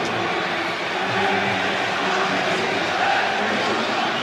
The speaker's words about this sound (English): Can hear what the crowd think.